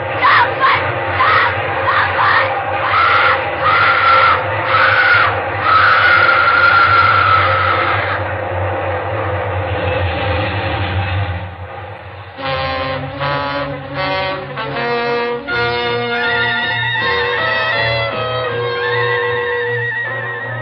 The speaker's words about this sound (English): Nobody's going to hear anything except this train. Here, there's the big baby now. A nice, long train. Long and loud.